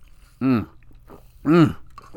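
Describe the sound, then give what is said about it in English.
Two loud gulps of water about a second apart, each a short wet swallow, with quiet background between them. “I gotta get water. Sorry.”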